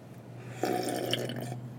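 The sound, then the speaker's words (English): A loud, wet slurping sip of a homemade drink called a WWL, lasting about a second, with a bubbly, airy hiss that starts abruptly and then cuts off. No one speaks. “If anybody's interested in going out to dinner with me, I typically don't sip that loud.”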